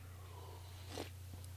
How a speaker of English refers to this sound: So let me take another sip. Hold on just one sec.